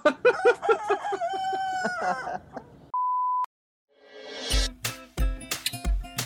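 A rooster crows loudly for about three seconds, followed by a brief electronic beep, a moment of silence, then bursts of noisy, punchy sound. No one speaks.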